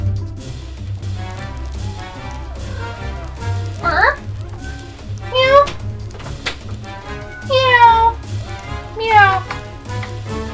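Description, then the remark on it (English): A cat meows about four times, each call a rising and falling wail spaced a couple of seconds apart, clear over a steady, humming musical background. “Hi, kitty cat.”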